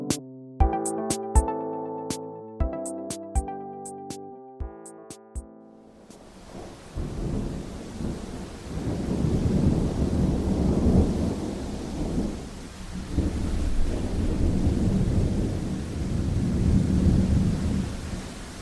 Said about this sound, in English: It was a dark and stormy night. No, really, it was. A famous moment in history. The year was 1816. A rented villa on Lake Geneva. A horrible electrical storm rages outside.